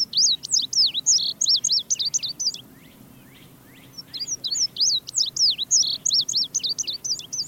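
An Indigo Bunting sings two bright, high-pitched songs of quick paired chirps and sweeping notes, separated by a short pause, clear against a faint background hush.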